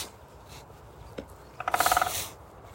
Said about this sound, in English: The woodpecker is resident on a telegraph pole.